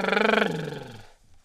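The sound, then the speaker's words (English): A voice imitates a car engine with a buzzy, rumbling drone that starts loud, then fades and sinks slightly in pitch over about a second before cutting off. “The whole point is to sound like a car.”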